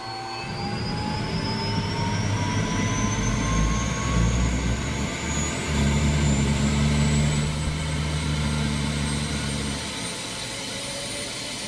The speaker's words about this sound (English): All too soon, it was time to climb back in the helicopter and head back to the city.